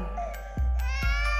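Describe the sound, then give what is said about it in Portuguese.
A baby's wailing cry, drawn-out and tonal, rides over a pounding bass beat with two heavy thumps, sampled into a 2013 Brazilian funk version of a carnival march song; no one speaks. “Não chora, bebê.”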